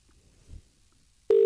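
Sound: phone call ringing tone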